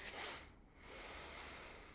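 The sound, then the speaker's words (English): Heavy breathing from a person who is excited and charged up with emotion: a rushing breath, a brief pause, then a long sustained breath, with no talking. “Breathing, because I get so excited and charged up. You can hear me with this emotion.”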